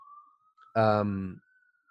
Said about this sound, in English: Also, there's an ambulance going on outside. Let me know if you hear it.